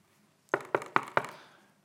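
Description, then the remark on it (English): Four crisp knocks on a door in a quick, evenly spaced sequence, fairly firm, each with a short woody decay, with no voices around them. “You got Jesus there knocking.”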